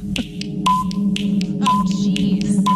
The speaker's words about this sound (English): Okay, here's what the timer sounds like, by the way. Okay, this is the 10-second timer. It's super chill, bro.